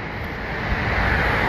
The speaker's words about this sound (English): There goes a bus.